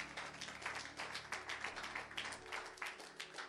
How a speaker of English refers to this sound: Clap for yourselves.